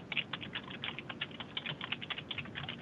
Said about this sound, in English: Someone's madly typing. A very good typist.